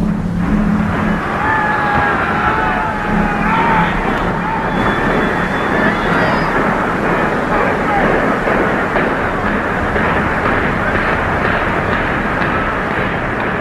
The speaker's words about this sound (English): it sounded like a train rumbling by as it kind of the explosives detonated section by section. Right. And it just kind of slowly crumbles to the ground.